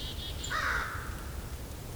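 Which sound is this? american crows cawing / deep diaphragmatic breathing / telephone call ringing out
american crows cawing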